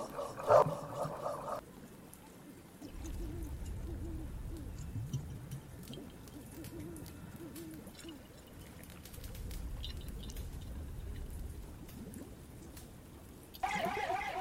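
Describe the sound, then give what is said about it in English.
Wet, rhythmic slurping and lapping from a dog, low and continuous, with a brighter squeaky burst at the start and again near the end. No one speaks. “It's doggy ASMR.”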